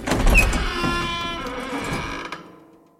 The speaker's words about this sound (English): Henry swung open the door and gently steered me inside.